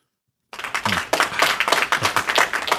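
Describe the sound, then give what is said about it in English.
A short burst of applause from a small group, dense overlapping claps starting abruptly after a moment of silence and continuing steadily at moderate loudness. “Little applause.”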